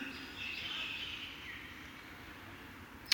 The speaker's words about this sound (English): You guys notice the birds nesting over here?